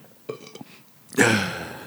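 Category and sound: human body sound, sneeze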